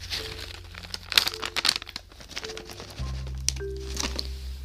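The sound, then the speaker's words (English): Crinkling of a plastic cat treat packet being handled to give a cat a treat, a run of irregular crackly rustles with sharper bursts, over a faint steady low hum and no talking. “I also need to give you a treat, do I?”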